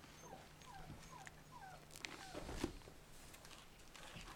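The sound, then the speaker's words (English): A dog whimpers in a string of short, high, wavering whines, four or five in quick succession, then trails off into quiet background noise. No one speaks. “I think we forgot to give the dogs food and water.”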